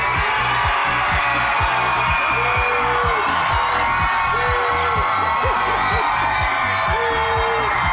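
A large crowd at the 2009 Ugly Dog contest in Sonoma County, California, applauds and cheers steadily for their favorite dog, Pabst: a dense wash of clapping with whoops and shouted voices rising over it throughout, heard by the judges.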